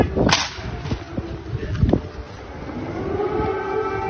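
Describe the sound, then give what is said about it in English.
An air raid siren in Ukraine wails steadily in the background through the second half, after two sharp cracking snaps near the start. No one speaks. “Goes the air raid siren.”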